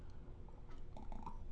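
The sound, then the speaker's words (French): A quiet sip of water: faint wet mouth clicks and a soft swallow over low background noise, with no one talking. “Permettez-moi une petite gorgée d'eau, là.”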